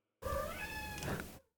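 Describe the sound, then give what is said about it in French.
A single drawn-out cat meow, loud, rising then bending in pitch over about a second before cutting off. No voices accompany it. “Ton chat le rit au moins.”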